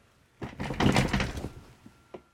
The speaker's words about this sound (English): You know what that was? What was that? I just fell off my chair.